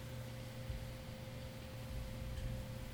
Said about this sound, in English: And if you hear that little slight rumble, that's actually me touching the pedal because it does have an actual spring inside.